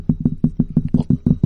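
A gentle drum roll tapped by hand: a quick, steady run of about nine soft, low thumps at an even pace, moderately loud, with no talking over it.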